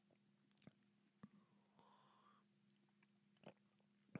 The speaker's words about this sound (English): All right, I'm gonna take a sip for this fine quality H2O.